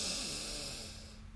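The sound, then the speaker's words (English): A single deep, airy breath rushes in and out, a steady breathy hiss that gradually fades over about a second, with no talking. It is a slow breath taken while stretching the body. “Just breathing in and breathing out.”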